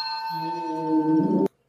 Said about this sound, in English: Oh. That's your doorbell.